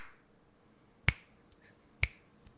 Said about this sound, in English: Yeah, the snaps were kind of whack. What's up with your snaps?